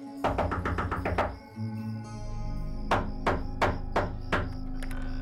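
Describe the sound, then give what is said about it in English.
Two bursts of rapid, firm knocking on a house door on Easey Street at 3 a.m., about six raps each with a short pause between, ending in a single rap, over a low steady drone. “At one point, he even tried knocking on the door of the man who currently lived at 147 Easey Street.”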